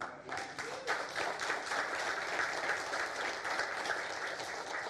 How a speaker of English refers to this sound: The kid is totally free. You can clap to Jesus for that one.